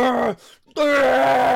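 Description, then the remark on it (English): A voice imitates a warrior's loud, angry yell in two long, sustained bursts separated by a short pause; the first drops in pitch at its end, and the second holds steady. “He doesn't have a retort. He just yells.”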